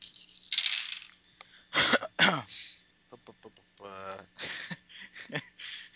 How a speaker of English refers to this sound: amusingly enough, I rolled 3 sixes, so 4 sixes.